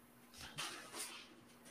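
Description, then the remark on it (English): A dog off its leash gets into its food: a few soft, brief crunching and rustling bursts, quiet, with no voices. “He's in here and getting in his food.”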